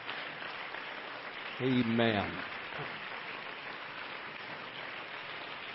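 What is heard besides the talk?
audience clapping hands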